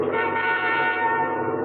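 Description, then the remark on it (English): A car horn blares in one long, unbroken honk, loud, holding a steady brassy tone for under two seconds with no voices around it; honked by a driver crossing an eroded ridge above a hogan on the slope below. “I honked a horn when I crossed the finely eroded ridge and saw Ben Yazzie's hogan on the slope below.”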